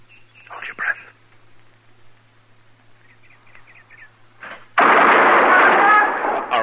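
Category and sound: impact, gunshots being fired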